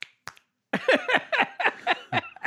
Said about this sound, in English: It's very hard to click your fingers when you have thumb holes in your hoodies.